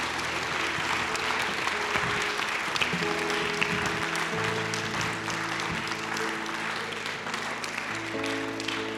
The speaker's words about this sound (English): Come on, give the Lord a clap offering right now. Give the Lord a clap offering. Amen.